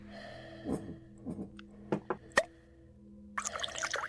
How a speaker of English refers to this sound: Two shots of gold poured straight to the rim.